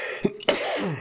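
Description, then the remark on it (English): A single sharp sneeze: a brief catch of breath, then a sudden explosive burst of air that trails off into a breathy fade. “Bless you.”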